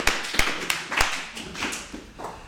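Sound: round of applause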